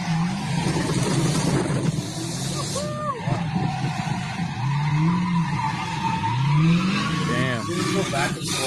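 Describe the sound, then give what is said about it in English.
A car drifts sideways, its engine revving in rising swoops while tires squeal in bursts, loud, with crowd noise and voices underneath. “Watch this fucking guy drive. Sideways, bro.”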